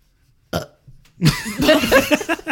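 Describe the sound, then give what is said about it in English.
A loud, drawn-out burp rumbles for over a second, preceded by a brief gulping sound and a softer low grunt. “Get your burping ass out of here.”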